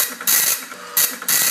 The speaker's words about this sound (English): That's the dot matrix printer.